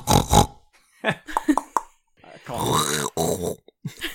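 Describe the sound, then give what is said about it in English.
Several people imitate pigs, making snorting, grunting pig noises in quick succession, fairly loud, with short piggy oinks followed by a longer, wavering squeal-like grunt and a few more snorts. “Well, you're better pigs than I am.”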